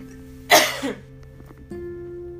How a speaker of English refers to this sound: Excuse me, y'all. This is the worst. I did not know my hiccups was going to kick back in.